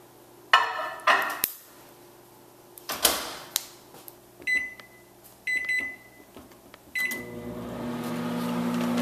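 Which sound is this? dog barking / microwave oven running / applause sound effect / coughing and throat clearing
microwave oven running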